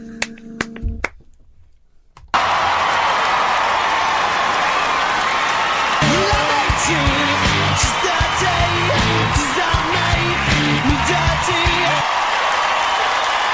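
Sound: crowd cheering and whooping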